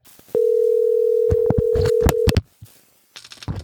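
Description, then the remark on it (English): A steady, unbroken telephone dial tone hums for about two seconds as a caller hangs up and places a call back, with several sharp clicks and taps over it before it cuts off, followed by faint handling noise. “I'm just going to hang up and call him back.”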